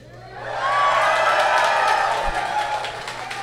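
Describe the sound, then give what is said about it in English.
A live audience at the show Cox and Crendor Live breaks into cheering that swells within the first second and holds as a loud, steady roar of voices, with scattered whoops rising above the crowd noise. “Shout out to the one guy who was like, I'm starting this cheer, and you saved us.”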